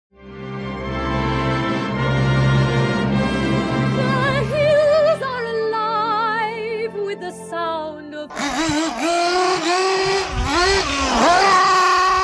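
A small nitro RC buggy engine runs up close, starting with a steady buzzing drone, then climbing into a higher whine before bursting into loud, rapidly rising and falling revs.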